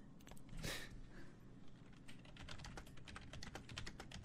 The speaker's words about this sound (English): Sorry, I'm typing something.